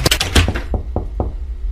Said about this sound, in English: I knocked on it. Don't knock on doors, you weirdo.